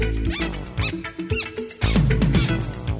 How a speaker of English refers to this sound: My shoes started to squeak.